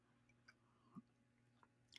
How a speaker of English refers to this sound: And I'm going to take a quick sip of my water because my mouth is dry.